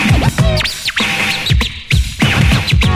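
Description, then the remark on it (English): Rapid turntable scratches by a DJ whip back and forth in quick bursts, the record's rising and falling pitch sweeps chirping and warbling like a bird, loud with no voices. “Now make it sound like a bird.”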